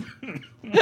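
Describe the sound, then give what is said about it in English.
A brief cough bursts out at the end, preceded by a couple of short, strained vocal sounds like a throat catching. “coughing that, we will say goodbye for this episode of the podcast.”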